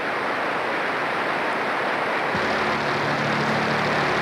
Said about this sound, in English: Yeah, the pink noise just completely eats the mix. I have another clip of it here.